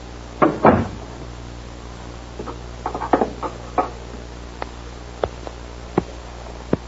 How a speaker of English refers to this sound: They never work, these lighters. Never the first time.